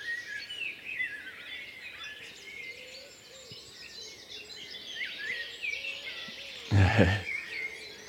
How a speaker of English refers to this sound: And I'm just hoping he sings happy birthday, this blackbird. I'm hoping he does it. Of course, he won't do it now I'm asking. Come on.